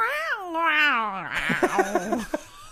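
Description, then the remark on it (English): A vet tech gives a long, wavering meow in imitation of a cat, the pitch sliding up and down, then trails into a few short breathy bursts like laughter, clear. “Would you like to give a reenactment of what the cat sounded like,”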